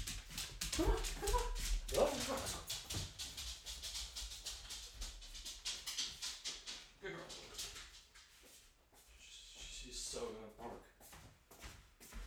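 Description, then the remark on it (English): A female dog that wants to go outside whimpers and gives short, repeated yips and barks, the restless sounds coming in quick bursts that are loudest early on and continuing throughout. “Guarantee you, she just wants to go outside to bark.”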